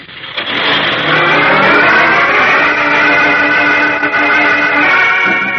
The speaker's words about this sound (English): Eyes wide and heart-pounding, young Chuck Riggs watches the truck carrying his uncle and the other hooded terrorists roar out of the dark driveway.